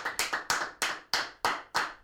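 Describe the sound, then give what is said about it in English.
A live studio audience claps in a steady, even rhythm, about eight sharp, bright claps over two seconds, moderately loud, with no voices. “All those claps came from the live audience that's in the studio right now.”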